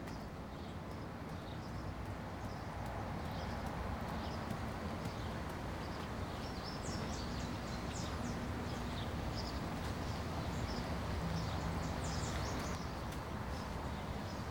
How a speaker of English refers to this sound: It's nice that they're either mimicking the sounds, or they actually included birds on the Terra Venture.